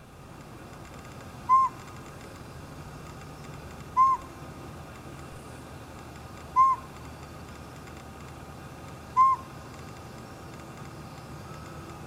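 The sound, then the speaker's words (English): A northern pygmy owl gives four short, clear single-note toots, evenly spaced about two and a half seconds apart, over a quiet background with no talking. “It's going to be the northern pygmy owl.”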